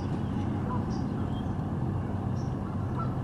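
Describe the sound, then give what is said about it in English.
A few faint, scattered goose honks sit in the background over a steady, heavy low rumble, with short nasal calls popping up now and then. “Yeah, we got some geese fucking in the background.”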